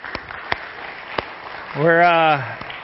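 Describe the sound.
A few sparse, scattered hand claps from a church audience after the praise team sings, irregularly spaced, with a brief sustained voice rising over them partway through.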